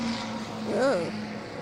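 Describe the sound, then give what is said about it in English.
A sports race car engine roars past on a track, its pitch rising and then falling away in a quick whine over a steady low drone, fairly loud for about a second. “Hearing the roar of the cars, listening online whilst making my way home on a Friday evening here in Toronto.”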